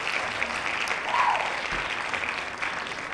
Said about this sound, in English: Claps.